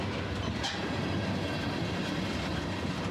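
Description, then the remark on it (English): A train pulls into a station, rolling steadily on the rails with a dense, continuous rumble, and a faint high-pitched wheel screech rises briefly near the start as it slows. No one speaks. “listening to the gentle screech of the wheels as the train pulled into station.”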